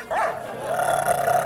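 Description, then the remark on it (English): A dog named Wolf growls aggressively and loudly, in one continuous snarling rumble that rises at the start and holds steady for over a second without a break, as it goes for a knight at a feast. “Wolf has never acted like that, never so much as bared his teeth. Let me help you up. You should chain that beast.”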